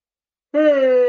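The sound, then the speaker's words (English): A loud, drawn-out voiced yawn begins after a brief silence, a steady low moaning tone that sinks slightly in pitch and holds for over half a second, with no talking. “Excuse my yawn.”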